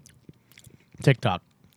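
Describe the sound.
Small crunchy clicks of someone biting and chewing a hard little Coca-Cola-flavored Tic Tac candy, followed by two short, louder voiced murmurs from the person eating.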